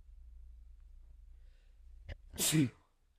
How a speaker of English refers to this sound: There you go. First sneeze on camera while we're recording these. Awesome. I'm not going to cut it. You can just enjoy it.